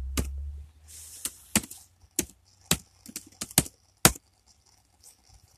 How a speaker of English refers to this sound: Okay, guys, here's a song I wrote back in 69. It's called Typing on a Keyboard. Here it goes.